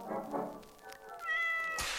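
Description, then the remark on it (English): A cat meows loudly, a drawn-out, rising cry with clear tonal harmonics that ends in a brief breathy burst. No one speaks. “This week in the news, cats.”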